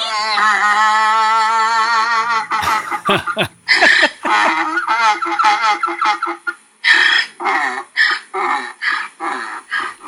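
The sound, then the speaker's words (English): A donkey named Monty, known as the singing donkey, brays loudly, opening with a long, wavering drawn-out note, then breaking into a rapid series of rasping, rhythmic hee-haw bursts with no voices around it. “No, but seriously, guys, look for Monty the singing donkey and follow that page.”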